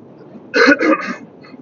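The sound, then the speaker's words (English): A brief throat clearing after drinking cold water: two or three raspy, rough bursts in quick succession lasting about half a second, then a faint low murmur fading away. “Cold water's not good for the throat.”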